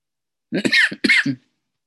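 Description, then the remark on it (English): Two quick coughs in close succession, fairly loud, each a rough burst of breath and voice, followed by quiet. “Coughing a little bit.”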